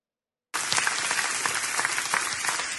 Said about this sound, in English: And people are clapping. Yeah, because they're having their itching ears tickled by this guy.